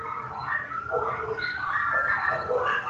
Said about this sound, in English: I hear dogs. Yeah. They're not mine, though. They're not your dogs, right?